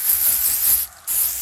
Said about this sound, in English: I'm having Jocelyn spray the Lysol on everything.